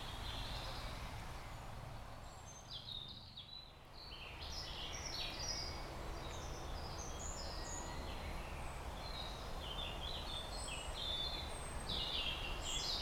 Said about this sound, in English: I can hear robins, mostly.